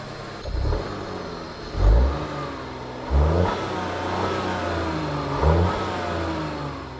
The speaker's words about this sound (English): When you're in the lower revs, it almost sounds like a pitched down V8. Of course, once you go past 3,000 revs, you know, it starts to strain. You hear the wheeze of the turbo, it's not too great, but here's a clip.